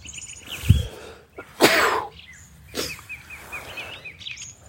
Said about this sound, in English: This is truly gripping podcasting. Tune in every night to hear a man sneezing in a field.